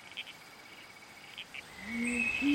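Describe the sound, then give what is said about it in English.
A red-crowned toadlet in Australia gives a few short, clipped calls spaced apart in a quiet night setting, followed by rising tonal chirps and a swelling background of insect-like buzzing. “The red-crowned toadlet.”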